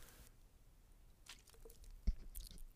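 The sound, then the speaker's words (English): Someone takes a quiet swig of water, with faint wet mouth and swallowing sounds followed by a single sharp click near the end; nobody speaks. “If you don't mind, I've gone 46 straight minutes, and I need to take a swig of water, and I hope you don't hear it.”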